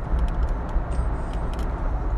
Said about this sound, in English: Sorry, I am in traffic a little bit, dealing with some assholes driving like assholes. But that is what it is. You know how Florida drivers are.